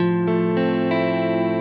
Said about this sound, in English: So this is a modulation where the signal feeding into the delay lines of the reverb, again, reverb is really a big matrix of delay lines, at least that's one way to do it. That's the plate algorithm here.